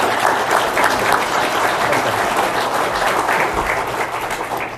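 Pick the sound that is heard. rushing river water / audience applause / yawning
audience applause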